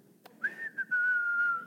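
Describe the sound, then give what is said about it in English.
A casual whistle starts with a short upward slide, then settles into one long, steady note that dips slightly in pitch. It's clear, with a faint click just before it and no talking. “God is not just the God that's like, you know, whistling off to the side, looking away from all you're walking through.”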